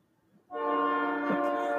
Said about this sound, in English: And as you can tell, there's a train going by. I'm not going to edit that out because this is a quick and dirty episode.